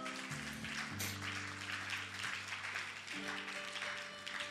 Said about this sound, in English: Clap for Jesus.